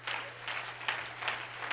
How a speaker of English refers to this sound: Let's all clap our hands unto the Lord right now.